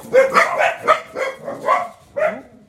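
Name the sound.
dogs barking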